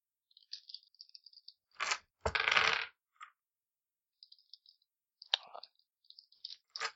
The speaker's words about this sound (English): Roll my other five dice. Maybe those will be kind.